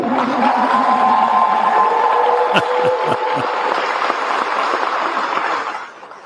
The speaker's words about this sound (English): HB 135, you can applaud.